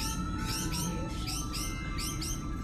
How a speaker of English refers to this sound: I don't like birds, okay? They freak me out. And now the station is overrun with them, and what the hell kind of birds are these anyways? They grow so fast